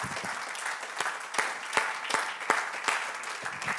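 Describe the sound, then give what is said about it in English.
An audience at Star City Church in the United States claps together after a presentation, a dense steady patter of many hands with a few sharper, louder claps standing out at irregular moments; no one speaks over it. “Let's clap our hands unto the Lord for that presentation.”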